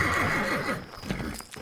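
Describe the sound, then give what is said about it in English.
A carriage horse gives a loud, wavering whinny, then hooves clop a few times on a hard surface as the neigh fades. No one speaks. “The horses looked wrong somehow, but in a way I couldn't place, like shadows stripped from their manes.”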